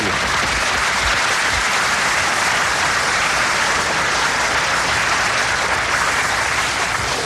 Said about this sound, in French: À tout seigneur, à tout honneur. Sur vos applaudissements.